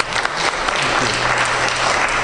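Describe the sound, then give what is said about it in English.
An audience claps steadily, a dense, continuous wash of applause that stays loud and even from start to finish with no voices standing out. “On behalf of, give a round of applause.”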